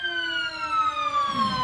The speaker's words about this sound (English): Haven't we had a siren every time we've done the show from this location? No, it's either been a siren or a bus. Because Station 24 is just down the road.